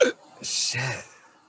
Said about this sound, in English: Shit. You gave me the hiccups.